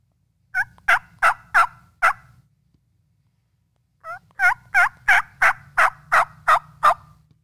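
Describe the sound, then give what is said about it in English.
A hen turkey call made on a game call: a short run of about five raspy yelps, a brief pause, then a longer, steady series of evenly spaced yelps, with no talking. “So if I was just sitting there and everything's calm, here's a generalization of it.”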